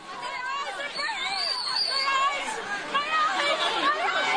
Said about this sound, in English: and this is actually, I don't know if it's surveillance footage or someone's cell phone recording the aftermath of this pepper spray. And this is a big crowd of people looking to get some Xboxes here.